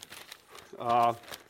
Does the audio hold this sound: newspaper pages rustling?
yes